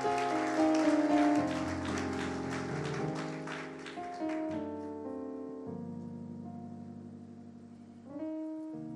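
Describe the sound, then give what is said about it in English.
A church audience claps over sustained organ or keyboard chords. The dense, crackling applause is loud at first and fades out about halfway through, leaving the held musical tones alone. “If you want to clap, let's give on to the Lord.”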